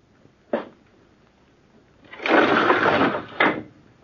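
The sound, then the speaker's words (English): A window being opened: a sharp clunk, a pause, then a loud grinding slide lasting about a second that ends in another solid knock, with no voices. “Anything else you want of me besides opening this window, Uncle?”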